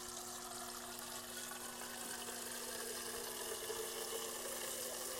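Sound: water running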